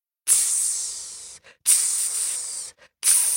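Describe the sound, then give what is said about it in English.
A black goose hissing in three long, harsh, breathy bursts, each lasting over a second with short pauses between, sharp and high-pitched, with no talking. “A black goose sleeping on the roof of the hut flew down and hissed at Vasilisa.”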